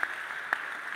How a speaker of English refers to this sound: Your clap is shaking a bit right now.